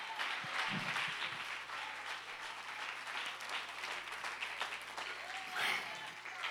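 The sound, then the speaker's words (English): A large audience claps hands in a steady, dense wash of applause that holds for several seconds, with scattered voices and cheers mixed in and a low hum underneath. “Come on, clap your hands and rejoice.”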